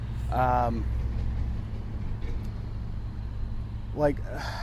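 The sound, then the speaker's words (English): Heavy engines rumble steadily and low as a series of three or four big trucks roll past in a row at a trucker area, the drone holding for several seconds. Brief snatches of a voice break in at the start and near the end. “A series of big trucks, actually, like 3 or 4 in a row.”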